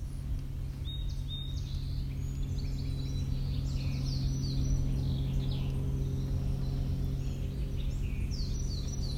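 A steady, droning engine hum from a float plane passing overhead holds throughout, with scattered high chirps and twitters of a song sparrow over it; no one speaks.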